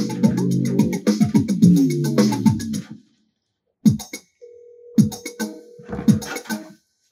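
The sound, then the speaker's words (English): A phone call being placed: a sustained electronic ringing tone sounds amid scratchy handling noise and sharp clicks, with brief pauses between bursts and no one speaking. “Well, let's give him a call.”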